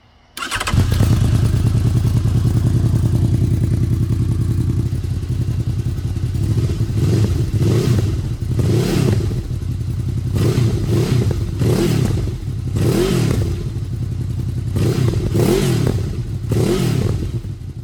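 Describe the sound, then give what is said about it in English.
A motorcycle with a GPR exhaust, ridden without its dB killer, starts and settles into a loud, deep idle, then is revved repeatedly in sharp bursts, each throttle blip rising and falling with a raw, unmuffled exhaust bark. “So I don't know which one it'll be long term, but I've been riding it without the DB Killer, which sounds like this.”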